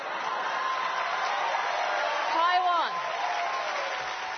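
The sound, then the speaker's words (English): An enthusiastic crowd at a rally with Hong Kong democracy activist Denise Ho cheers and applauds steadily, a dense wash of clapping and voices, with a rising whoop breaking through briefly midway before the roar settles back to a constant level. “You're just checking out the crowd there, and you can tell how enthusiastic everyone is.”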